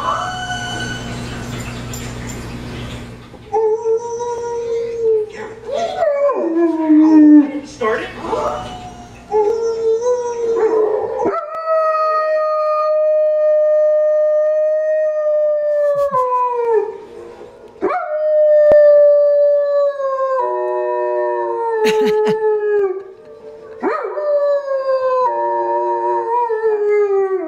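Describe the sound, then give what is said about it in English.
A German Shepherd dog howls in response to howling in a movie, in long, wavering, drawn-out loud tones that rise and fall, with brief pauses between howls after a short burst of noisy sound at the start. “So he just howls when he hears howling.”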